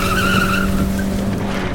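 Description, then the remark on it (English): A speeding car's tires squeal in a loud, sustained skid around a turn as the engine roars underneath with the accelerator floored, the screech holding steady for a moment before fading into continued engine noise. “Faster, Saul. I'm flooring it. Hold on. Turn coming.”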